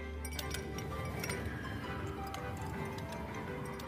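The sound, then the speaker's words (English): A Joy-Con game controller vibrates to mimic ice cubes colliding in a cup: light, irregular clinks repeat over a steady low buzz, with no one speaking. “The Joy-Con can convey to you the feeling of ice cubes colliding in a cup.”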